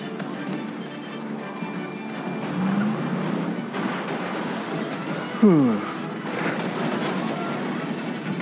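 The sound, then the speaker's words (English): Engines roar and rumble through a busy movie car chase, with a tire screech rising briefly and a sharp, loud skid burst midway, all mixed with dense background action noise. “I can't watch car chases in movies after I've seen the movie Ronin growing up.”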